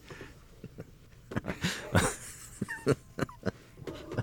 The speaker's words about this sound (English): Someone's at our door. The dog's barking.